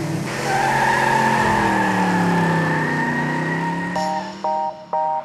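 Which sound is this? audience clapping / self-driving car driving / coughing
self-driving car driving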